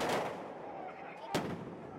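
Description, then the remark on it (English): Two sharp bangs, one at the start and another a little over a second later, ring out over a noisy street background during a protest over Bolivia's census in La Paz, as riot police fire tear gas and demonstrators set off fireworks. “Riot police fire tear gas and demonstrators set off fireworks.”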